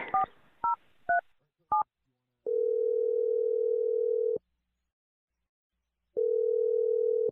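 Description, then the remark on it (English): A few quick two-tone keypad beeps as a phone number is dialed, then a long steady telephone tone, a pause, and the tone again, clear with no one talking. “I'm going to dial his number right now and let you make your awkward Tuesday phone call.”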